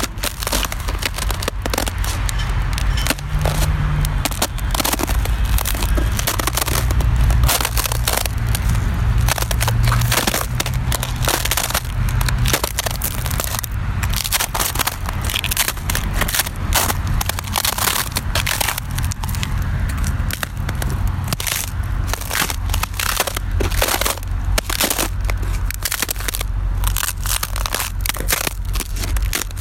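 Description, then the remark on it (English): Ice cracks and crunches in a steady, dense crackle of sharp snaps for the whole stretch, with a low rumble of passing traffic underneath, in Bloomington, Indiana, in winter 2022. No voices are heard. “You've been listening to Ice Cracking with Traffic somewhere in Bloomington, Indiana, winter 2022.”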